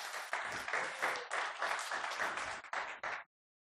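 An audience breaks into steady applause, a dense patter of many hands clapping at full strength for about three seconds before cutting off abruptly into silence.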